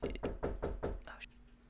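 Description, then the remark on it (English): Five quick, evenly spaced, firm knocks on the front door by a man wearing a mask and holding a clipboard, followed by a brief quiet stretch with faint background noise. “There's a guy at the front door with a mask on and a clipboard.”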